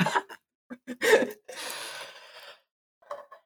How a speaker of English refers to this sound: Bear with. He's going to sneeze.